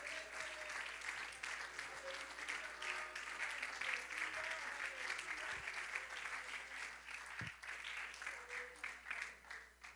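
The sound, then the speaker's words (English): A crowd stands and claps hands in sustained, dense applause in O'Fallon for the full length, steady and fairly loud, with faint voices mixed underneath and the clapping thinning slightly toward the end. “Come on, I want you to stand to your feet, clap your hands, and say, God, I want you to speak in O'Fallon today.”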